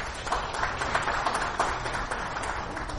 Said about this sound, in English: Give the Lord a hand clap, amen?